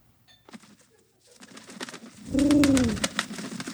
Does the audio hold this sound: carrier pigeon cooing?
yes